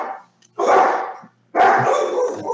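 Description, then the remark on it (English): Dogs bark loudly in two sustained, overlapping bursts separated by a brief pause, with no one speaking over them. “Shut the damn dogs up.”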